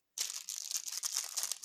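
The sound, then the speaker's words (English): Wrapping paper is torn and crinkled as a large, heavy present is unwrapped, a sudden burst of dense, crackly rustling that keeps going without a break, with no voices over it. “It's a lot of wrapping paper.”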